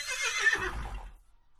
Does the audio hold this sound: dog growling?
no